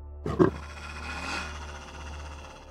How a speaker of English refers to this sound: The sound of growling coming from Aurora.